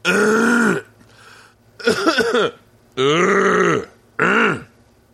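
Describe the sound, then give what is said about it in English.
A voice makes four loud, exaggerated throat-clearing noises in separate bursts, each a deep, rough, voiced rasp with a short pause between them. No words are spoken. “It'd be great if he was like, "Let me clear my throat."”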